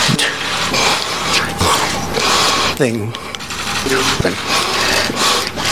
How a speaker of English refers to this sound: I do have a string of sniffs. Here we go. 26 seconds of sniffs from a much shorter speech than what Joe Biden gave.